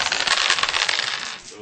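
Dice roll across a table, a quick flurry of small hard clattering clicks rattling densely for a second and a half before tapering off.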